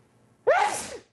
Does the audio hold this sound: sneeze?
yes